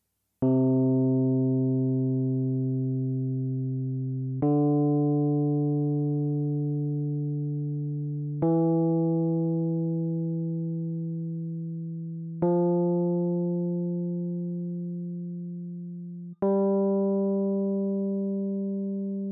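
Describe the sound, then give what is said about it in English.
A C major scale played slowly on a keyboard, five sustained notes climbing step by step, each struck cleanly and held about four seconds as it gently fades, with no voices. “Let's hear what a C major scale sounds like on the keyboard.”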